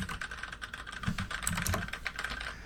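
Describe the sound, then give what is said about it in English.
Rapid clattering keystrokes from more than one computer keyboard, overlapping in a busy, uneven rhythm, moderately loud with no voices. “Get ready for some keyboards. Yeah, it's dueling boardies.”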